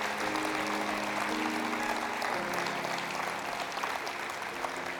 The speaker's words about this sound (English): Let's all stand to our feet together, turn the lights on. Let's give the Lord a big hand clap right now. Come on.